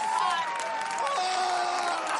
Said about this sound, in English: the chants started getting louder and louder, and before you knew it, the audience had erupted into cheers of joy